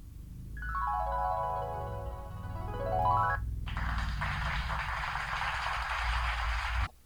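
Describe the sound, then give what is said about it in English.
A telephone rings with a loud electronic tone that glides down and back up, then gives way to a steady burst of noisy static before cutting off abruptly, as a call-in psychic show goes to the phones. “Okay, Kenny, let's go to the phones.”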